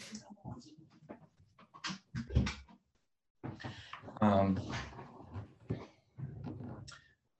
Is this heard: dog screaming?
yes